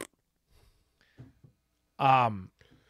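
A single loud, buzzy fart noise lasting about half a second, brassy, preceded by a few faint clicks and soft shuffling in an otherwise quiet stretch.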